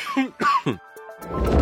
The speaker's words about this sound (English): And cough.